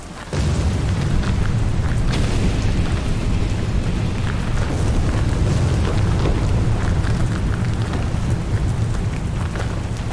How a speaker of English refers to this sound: A large explosion rushed Wesley back to the external world, where two forces of indescribable power duked it out for reasons too ancient for Wesley to fathom.